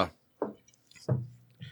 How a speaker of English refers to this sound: You know what? I'm going to pour myself a little drink here. All right. Now we're good.